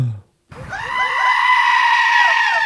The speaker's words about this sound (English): So did it involve goats? The goats were actually screaming inside my brain.